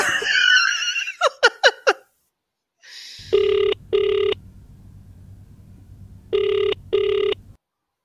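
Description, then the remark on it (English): A brief burst of laughter, then a phone ringing out on an outgoing call: two double-pulsed ringback tones, separated by a pause, over a low line hum. “So, I pulled out my best yet popcorn, and I called that phone number.”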